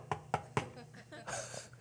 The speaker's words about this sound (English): And then there's a knock at the door.